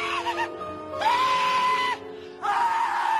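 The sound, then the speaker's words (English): A voice, the Thin Man played by Crispin Glover in Charlie's Angels, lets out a few shrill, high-pitched screams: a short burst, then two long sustained wails separated by a brief pause, loud with no talking. “She dated Crispin Glover, who played the thin man in Charlie's Angels that would scream when he pulled your hair out.”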